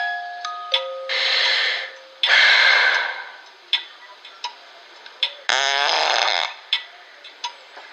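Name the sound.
fart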